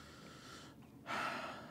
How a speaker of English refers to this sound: It's good that on an audio medium, you just sit there breathing into the mic.